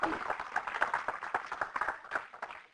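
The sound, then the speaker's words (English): A church audience applauding singers as a clap of praise, with many overlapping hand claps forming a steady, dense patter at moderate volume, joined by a few faint voices underneath. “Give them another hand clap of praise.”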